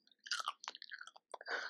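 Open-mouthed chewing on the last crunchy chip: a quick series of wet, crackling crunches in irregular bursts, loud, with brief pauses between bites and no talking.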